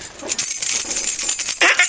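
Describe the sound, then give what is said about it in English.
Keys and loose coins jingle together in a bright, metallic rattle, fairly loud, shaking continuously for a couple of seconds with no voices. “That's the keys of change.”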